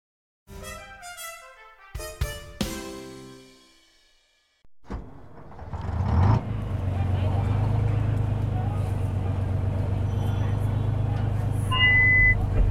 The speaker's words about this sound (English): Welcome, ladies and gentlemen, to the Bay Bouncer, Halifax's amphibious tourist bus. We go from Halifax across the harbor to Dartmouth on this massive amphibitron.